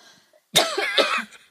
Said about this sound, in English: That's a terrifying cough. It just came on so unexpectedly. I don't know where it came from. Maybe I was choking on my own bullshit.